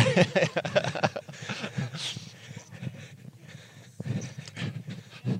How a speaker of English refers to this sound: Huge dogs around here.